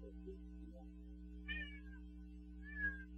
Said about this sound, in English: Welcome, kitty. Yeah, my cat, Charlie. All right. Hi, Charlie.